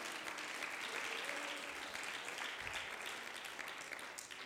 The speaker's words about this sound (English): Somebody ought to clap your hands unto the Lord today.